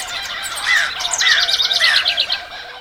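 Several birds chirp and whistle together, with repeated rising notes and rapid trills layered over a soft outdoor hiss. The calls are steady, with no talking.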